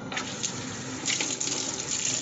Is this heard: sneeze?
no